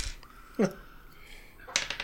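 Dice clatter briefly on a tabletop during a tabletop role-playing game, a quick burst of small hard clicks near the end, after a single soft thump earlier. Modest in volume.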